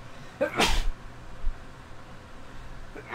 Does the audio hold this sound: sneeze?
yes